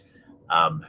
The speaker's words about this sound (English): here comes my train